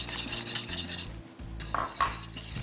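A utensil stirs a thickening slurry, added a little at a time, into a sauce in a pot, with steady swishing strokes and a few light metallic clinks, over a low simmering hiss.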